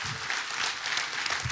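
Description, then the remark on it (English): An audience claps steadily, a dense wash of many hands applauding at once with no voices standing out, holding an even level throughout. “Y'all give these guys a big hand clap.”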